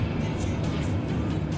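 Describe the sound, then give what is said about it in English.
A car engine, being fired up, rumbles steadily, a continuous low drone with a faint higher whine, holding an even loudness throughout without any pause. “By the time you fire it up, I could get my chickens impregnated by the time you fire up this engine.”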